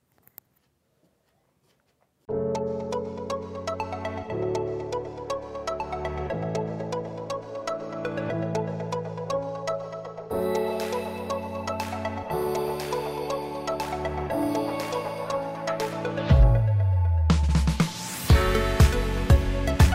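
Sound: phone alarm going off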